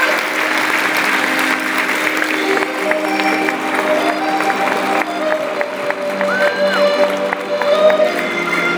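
A stadium crowd of about 60,000 applauds steadily for several seconds, a dense, loud wash of clapping with a few whistles and cheers rising above it. No one speaks over it.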